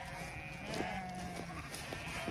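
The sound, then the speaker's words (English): Several sheep bleat in overlapping calls against a steady outdoor background, wavering cries from a flock with no pauses between them; Gareth Wynne Jones's sheep being gathered from the mountains with his dogs. “So these are his sheep and his dogs.”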